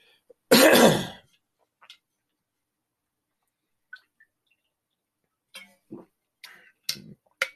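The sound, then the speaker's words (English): A sharp, loud cough or throat clearing after taking a drink, followed by a few small clicks and several softer throat-clearing sounds and swallowing noises spread out over the next few seconds. “Excuse me, I gotta take a drink and cough it up.”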